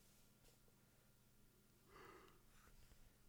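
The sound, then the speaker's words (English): A single, fairly quiet yawn rises out of a low background hiss, a breathy, drawn-out exhale with a faint voiced tone lasting under a second. No one speaks. “Yawn.”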